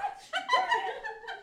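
A dog whimpers and gives short, whiny yelps in a few quick bursts over a second or so, moderately loud, with no talking.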